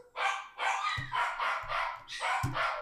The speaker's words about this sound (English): Damn, who's out here moaning? I think it's my dog. What's it? Someone's squeaking. That's, I think, Jax.